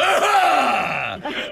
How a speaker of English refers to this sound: That's it, clear your throat just as you come on it.